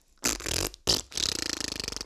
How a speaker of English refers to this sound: Our first radio-esque fart effect.